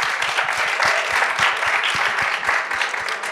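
A crowd breaks into sustained, dense applause, many hands clapping at once in a steady, loud wash of overlapping claps with no voices standing out.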